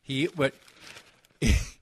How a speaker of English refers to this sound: I was doing the old read the paper in the studio. I think that's kind of a Sid move, right? Just sit in the studio and read the paper?